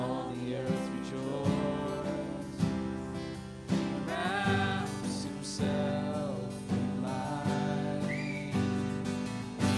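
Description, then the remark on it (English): A whistled melody floats above a full band, with bright sliding tones riding over steady chords and a regular beat. The whistling is fairly faint, partly buried in the loud instrumental backing. “Whistle with me, ….”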